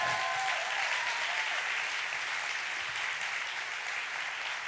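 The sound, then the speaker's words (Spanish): A crowd claps for the Lord in sustained, dense applause, a steady wash of many hands that holds at an even, fairly loud level from start to finish, with no voices rising above it. “Un aplauso al Señor por ellos.”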